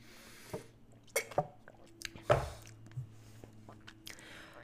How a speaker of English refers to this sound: Well, let me tell you this while I take a sip of my coffee.